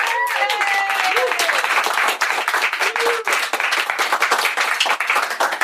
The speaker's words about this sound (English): It was supposed to end with applause.